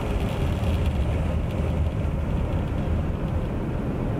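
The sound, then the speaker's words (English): A steady, dense rush of spraying water from an automatic car wash rinse cycle, heard from inside the car on a 32-degree day, with a deep, continuous rumble underneath and no break in the noise. “Here comes the rinse cycle.”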